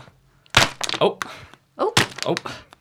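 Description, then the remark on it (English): Pens tumble out of a pocket and clatter onto a hard surface in two quick bursts, each a cluster of sharp, bright knocks and rattles with a brief pause between. “Do you have a few pens in your pocket? Yeah, sorry. Okay. They came out pretty quick.”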